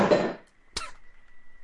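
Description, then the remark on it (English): A cup on the arm of a chair gets knocked over onto a lap: a short, rough burst of noise, a brief pause, then one sharp clack, followed by a faint, steady high whine. No one speaks. “Knocked my cup over.”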